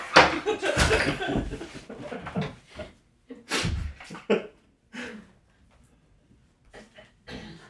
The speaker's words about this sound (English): I'm gonna shut that door.